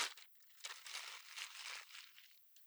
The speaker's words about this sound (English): He rips the drawing out of the pad and crumples it up.